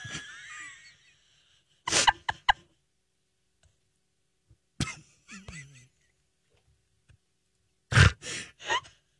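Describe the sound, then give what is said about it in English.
A croaky burp, from cottage cheese backing up, sounds amid a few sharp, breathy bursts, separated by quiet pauses. “I'm sorry, it was my cottage cheese backing up on me. Calm down. You ever burped?”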